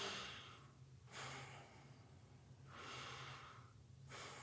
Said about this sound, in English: It's very simple. It's just belly breathing. So and the easy way to do it is you put your hand on your belly and you don't move your chest, keep all this quiet, and you're just inhaling through the nose.